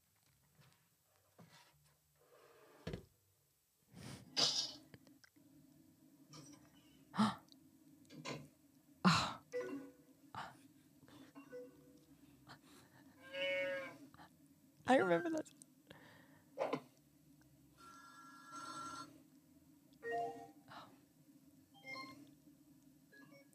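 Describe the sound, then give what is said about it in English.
An early-2000s computer log-on sound: a string of sharp clicks and short electronic tones over a steady low hum, with a brief ringing chime midway and a short spoken remark. “Log on sound.”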